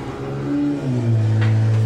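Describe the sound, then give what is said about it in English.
A chainsaw engine revs up its blade, its motor whine climbing steadily in pitch over a couple of seconds, loud with no one speaking. “As TBD revs up his chainsaw blade.”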